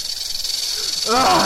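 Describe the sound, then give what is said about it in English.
A steady, dry rattling buzz from diamondback rattlesnakes, hissing and shaking continuously throughout, with a brief voiced sound rising over it near the end. “Snakes? Hell, there might be like a dozen big old diamondback rattlers in there, just waiting for me to stick my hand in.”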